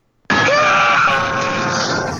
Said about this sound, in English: Today's Big Wheel winner, and let's get a good old Spidey scream going.